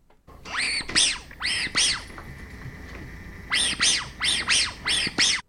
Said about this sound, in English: I'll give you a clue. My dog likes this one. Yeah, it's a squeaky dog toy. Squeaky dog toy.